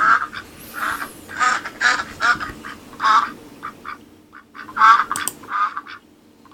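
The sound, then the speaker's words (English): A duck quacks repeatedly, about a dozen nasal, raspy calls in uneven bursts with short pauses between them, fairly loud with no voices. “Insert quacking up joke here.”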